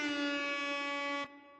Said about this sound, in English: Could I get some irony air horn, please?